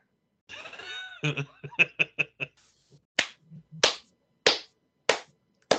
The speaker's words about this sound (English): My one person slow clap because that is a fantastic choice.